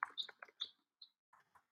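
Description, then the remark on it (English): Quiet, irregular clicking of keys on a computer keyboard, a quick flurry of taps followed by a pause and a few more scattered keystrokes, with no talking. “I'm just typing this in so we can share this and put it.”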